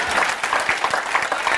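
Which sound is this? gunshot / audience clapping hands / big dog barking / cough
audience clapping hands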